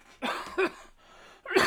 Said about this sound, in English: Ah, I'm getting over an illness, man. Sorry, I'm going to sit here and I'm going to try and not cough all over this microphone so that the people that listen to us are like, this guy's a piece of shit, man.